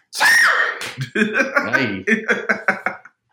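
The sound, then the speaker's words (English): A voice imitates how a classmate sneezed, a silly sneeze: one loud, breathy, hissing burst, then a quick string of short, choppy voiced bursts that sound almost like giggling. “somebody in my class would sneeze like this.”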